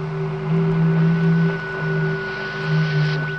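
Steady radio static with a low droning hum and a thin high electronic tone, pulsing slightly in loudness throughout, with no voices; radio impulses said to come from Venus.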